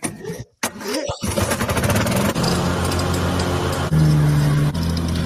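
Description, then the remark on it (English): A riding lawnmower with a Briggs & Stratton 600cc motor cranks briefly, catches and roars to life, then settles into a loud, steady drone with a slight rise in pitch partway through. “This is a Briggs & Stratton 600cc motor.”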